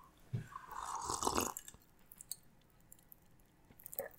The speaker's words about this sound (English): Yeah, so what do you have? Because we can probably hear yours. Yeah, I'm gonna let me take a sip and see if we can get some ASMR on this one.